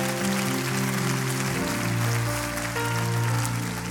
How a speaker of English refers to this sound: Come on, clap your hands for that.